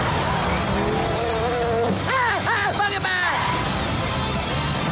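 Cars rumble steadily along a road, a continuous engine and road noise with a few rising and falling whining tones cutting through near the middle.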